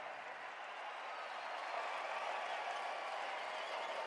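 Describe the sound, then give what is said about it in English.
A basketball crowd cheers and applauds in a dense, continuous roar after Kessler is fouled with the Jazz leading by five and 16 seconds left. The roar swells a little partway through and holds steady to the end, with no voices rising above it. “And the crowd loves it.”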